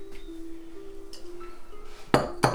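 Glass beer bottles clink together and are opened with a bottle opener, with a faint ringing tone at first and then two sharp, bright knocks in quick succession near the end, no voices present.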